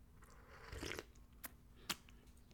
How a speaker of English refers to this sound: Quick sip of tea, boss. Don't mind me, boss.